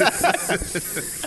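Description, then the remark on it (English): A voice imitates a hissing water heater, like an angry snake, with a run of sharp, breathy hisses in quick succession, fairly loud, lasting just over a second. “You didn't beat off next to the water heater. Yeah, just that fucking angry snake.”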